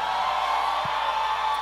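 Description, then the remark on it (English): An audience screams and cheers together in a sustained, dense roar that holds steadily for the whole moment, with no single voice standing out. “Scream right now.”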